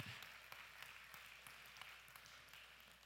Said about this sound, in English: Clap your hands.